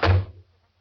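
A door swings shut with a single heavy thud, its low boom fading quickly into silence. No voices.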